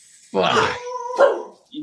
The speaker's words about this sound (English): Dogs are going crazy.